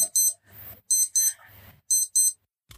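An alarm beeps in shrill double pulses, three pairs in steady rhythm, with a low muffled rumble in the gaps between them.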